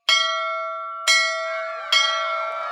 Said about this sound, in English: Seeing the signal in the distance, one of Boom's guards swung a mallet at the ship's bell at the top of the galley.